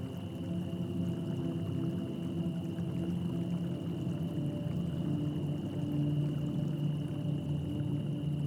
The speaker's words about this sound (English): You wait by the brook, fascinated by the shimmering of light in the water.